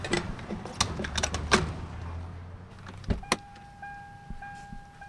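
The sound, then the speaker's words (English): Car sounds after refuelling with gasoline as someone gets back into the car: a few sharp clicks and shuffling, a solid door thud, then a steady electronic dashboard chime tone that keeps sounding to the end. “All right, well, let's get back in and get on our way.”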